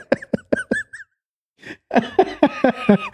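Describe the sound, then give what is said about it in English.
A rapid run of short, dry coughs, then a brief pause before a longer, harsher burst of coughing with raspy, voiced edges, from a lingering dry cough after COVID about a week earlier. “And I apologize for the kind of coughing that you might hear.”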